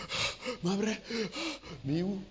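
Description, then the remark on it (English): A preacher imitates heavy panting: about five quick, rhythmic huffs and gasps, breathy and partly voiced, fairly loud, with no other talk. “You start panting.”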